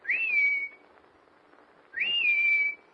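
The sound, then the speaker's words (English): A person whistles a short signal call twice to summon someone, outdoors in the snow near a raccoon pen as it grows dark, each a rising then steady tone lasting about half a second, separated by a pause, fairly clear with no talking. “knows my whistle. She'll answer it.”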